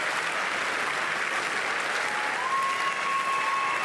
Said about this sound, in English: They're clapping already.